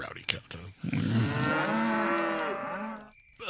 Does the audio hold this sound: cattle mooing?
yes